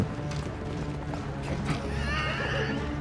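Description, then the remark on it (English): A horse pulling a wagon whinnies sharply as it is hit by an arrow, its rising, wavering cry standing out over a steady low rumble and rattle, like hooves and a wagon moving. “Wagon is damaged. Horse is hit.”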